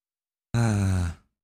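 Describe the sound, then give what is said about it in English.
A single loud snore into a microphone, a rough, buzzy breath lasting under a second that starts abruptly and trails off, with silence on either side and no talking. “again, you're snoring into the microphone.”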